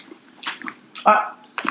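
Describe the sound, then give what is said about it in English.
Crunching of someone chewing crunchy sea salt bagel crisps, a few irregular crisp bursts with the loudest bite near the middle, set against a quiet background. “Do you like a sea salt bagel crisp?”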